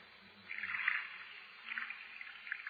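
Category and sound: household object, water poured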